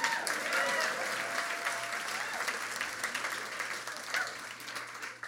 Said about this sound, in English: I've gone 3 weeks without placing a bet, 21 days. Everyone applauds. I said everyone applauds.